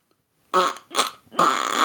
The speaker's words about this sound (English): Is that a fart noise? Yeah.